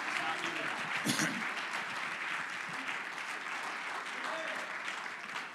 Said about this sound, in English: Would you clap your hands to the Lord here today? Hallelujah.